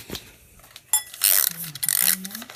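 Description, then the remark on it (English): A mechanical timer being wound to 20 minutes: one sharp click, then a loud run of rapid ratcheting clicks and rasps lasting about a second, with a low, steady hum beneath the later part. “Right, let's wind up the timer.”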